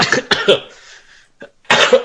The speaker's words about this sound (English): gets him coughing. Ah. Crawford just makes people sick. The Crawfords make me cough.